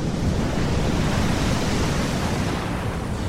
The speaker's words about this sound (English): It's a tidal wave, and this is going to do a lot of damage in a lot of directions.